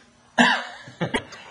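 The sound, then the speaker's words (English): A person coughs: one hard, harsh cough followed by two shorter, quieter coughs in quick succession, with no talking. “just to repeat everything that we just said very succinctly through all the coughing.”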